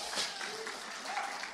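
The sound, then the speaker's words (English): An audience claps for the speaker's mother, who is present, in a dense, steady burst of applause, many hands blending into a continuous crackling wash at an even loudness for about a second and a half, with faint voices mixed in. “give her a clap.”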